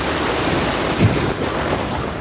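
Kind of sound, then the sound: nature, ocean waves and wind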